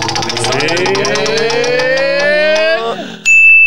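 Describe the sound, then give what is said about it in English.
The show's magical musical Wheel of Fortune, a prize wheel, spins with rapid ticking that gradually slows, layered over a rising whirring tone, then stops and a bright, sustained ding rings out. “And let's give it a spin now and see what comes up.”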